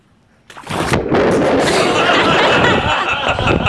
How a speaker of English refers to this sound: This is the clip of the guy looking for a Pokemon, and he falls into a pond.